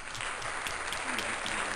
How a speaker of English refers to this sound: Tiger Hood is in the building, ladies and gentlemen. Cue applause.